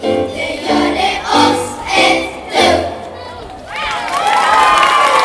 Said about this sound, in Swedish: När de hade sjungit klart så blev det applåder.